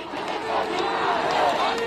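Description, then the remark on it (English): Tens of thousands of demonstrators protesting across India shout and chant together in a dense, continuous roar of overlapping voices, steady and loud throughout with no single voice standing out. “Today, tens of thousands of demonstrators continue to protest across India.”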